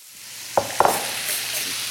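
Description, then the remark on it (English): Cubed, boneless, skinless chicken breasts coated in Cajun spice sizzle loudly in olive oil and butter on pretty high heat in a big, heavy skillet, a steady hissing crackle with two sharp spits as pieces hit the pan, no talking. “Now over here I've got olive oil and butter on pretty high heat in a big, heavy skillet.”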